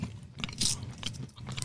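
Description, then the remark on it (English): Close-up chewing of a Reese's peanut brittle bite candy, a miniature peanut butter cup with peanut brittle flavored cream and crunchy peanut butter: a few sharp, bright crunches and crackles break through steady wet mastication, loud and right against the microphone, with no talking. “Got to chew into the microphone.”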